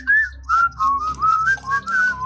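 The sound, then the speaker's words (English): A person whistles a short tune, the whistling part of a classic song, a string of clear, gliding notes in a steady melodic phrase with brief gaps between them, and no talking. “Can you do the whistling part?”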